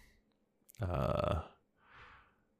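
A single loud burp, a deep croaking belch lasting about half a second, followed by a soft breathy exhale and then quiet.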